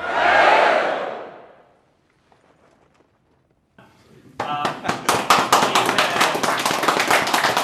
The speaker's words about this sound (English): You've just heard the rapturous applause of the winners being announced.